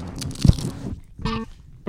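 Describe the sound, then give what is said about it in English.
A sharp crunch of a Dorito chip being bitten, followed by a brief pause and a second burst of crackly chewing noise, loud with no talking. “Now I got to do my final crunch real quick. Final crunch.”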